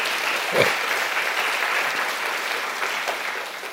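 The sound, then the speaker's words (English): An audience claps steadily for several seconds for a man celebrating one year sober, a dense, even wash of many hands with no single beats standing out, fading slightly at the end. “And y'all can clap for that, my brother.”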